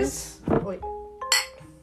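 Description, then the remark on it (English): Glasses of a thick strawberry drink clink together in a toast, bright, with a dull knock followed by a ringing chime that lingers briefly, and faint voices murmuring around it. “So cheers.”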